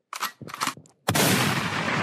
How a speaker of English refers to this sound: Can I get a gunshot, please?